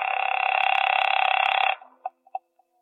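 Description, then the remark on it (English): A telephone being dialed at the Hotel Lee in Charleston at 8:30 p.m.: a steady, buzzing dial tone holds for under two seconds, then cuts off into a few short, quiet clicks and beeps. No one speaks. “by the time I checked in, and my first move was to the phone.”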